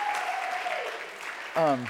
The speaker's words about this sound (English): oh yeah, see? Applause, I didn't even ask for applause. It just starts naturally.